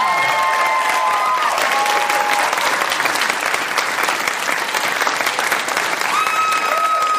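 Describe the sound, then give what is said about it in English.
Loud, sustained applause from a festival comedy show audience as comedian Rhea Butcher is introduced to the stage, a dense steady patter of clapping lasting the whole stretch, with a few whoops and cheers rising over it. “Please give it up for the very funny Rhea Butcher, everybody.”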